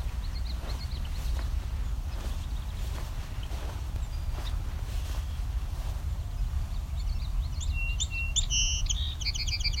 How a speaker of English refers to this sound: So we've got a song sparrow here. So you can hear both song sparrow and Savannah sparrow here. Very similar songs.